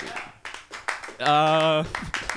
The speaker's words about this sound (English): Maybe that clapping was a little misplaced.